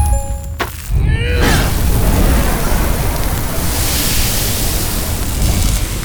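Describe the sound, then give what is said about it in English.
Brief electronic tones give way to a loud, sustained roaring fire blast melting through metal, a dense whooshing rush of flame that holds steady for about five seconds with no talking. “Let's see how this thing likes my fire!”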